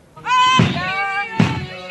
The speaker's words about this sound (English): Activists shout as RCMP break down the door of their protest trailer, parked across from Kinder Morgan's Burnaby Terminal for weeks.